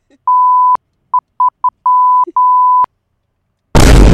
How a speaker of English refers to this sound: Hold on, we're getting a telegram. It's Gilbert. It's Gilbert Gottfried. It's not done coming in yet. I'll get a notification sound when it's done coming in.